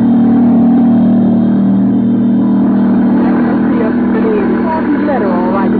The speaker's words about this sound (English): But now, let's go to the airport in Burbank, out beyond the huge Warner Brothers studio. As the 5:30 plane takes off for New York, in the crowd are two girls. Let's listen.